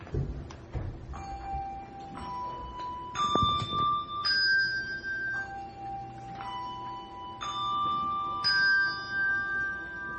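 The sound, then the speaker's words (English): Handbells ring a slow sequence of about seven clear, sustained notes, each held for a second or so and then cleanly damped as the next one sounds, with no talking. “So first they're going to ring, and then they're going to stop the ring, and then they're going to do it where they don't damp, and that's like putting down the pedal of the piano.”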